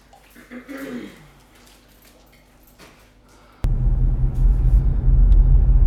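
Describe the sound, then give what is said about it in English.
A heavy truck engine suddenly roars, a loud, deep rumble that fills the last couple of seconds after a quieter stretch of faint background noise. “Was it that truck that lives at the house that's for sale on Ribbonson Loop?”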